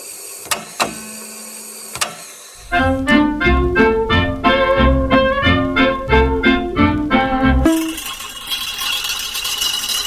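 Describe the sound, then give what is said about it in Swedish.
A few sharp clicks, then a short fanfare jingle introducing a fika (coffee break) presentation: bright, rapidly repeated brassy notes for about five seconds, ending abruptly into a steady hiss. No one speaks. “Och idag ska vi få en liten fanfar in till fika-presentationen.”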